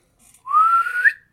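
A single rising whistle from a person, clear and fairly loud, sliding upward over about a second before cutting off, whistling up at a boy climbing the sails of a ship, with no talking around it.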